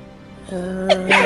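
A quick sneeze, set off by patting oneself down to shake off soot and dust: a short sharp catch of breath, then a breathy, hissing burst at the very end, over a steady low humming tone that runs beneath it.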